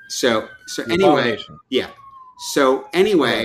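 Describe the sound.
A police siren drones steadily in the background, a thin wailing tone that slowly drifts lower, partly buried under people talking over it, sounding as a new Geekscape show is announced for the network.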